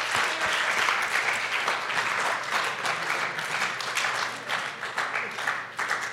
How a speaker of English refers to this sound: Everybody clapped for me. Thank you.